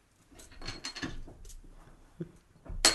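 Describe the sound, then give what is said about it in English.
A small plastic bottle cap drops and clatters on a hard floor, a scatter of light ticks and taps followed by one sharp, bright click at the end. No one speaks. “The bottle cap just hit the planet from not outer space.”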